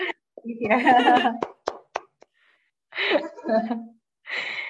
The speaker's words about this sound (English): This is me clapping.